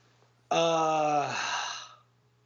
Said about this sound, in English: Are you yawning again? Yeah, I think so. Stop it. I have kids, man. Leave me alone.